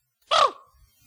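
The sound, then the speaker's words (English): A person imitates a raven at a lower pitch, with one short, raspy, throaty caw that dips slightly in pitch and ends quickly, followed by near silence. “Oh, you do a raven.”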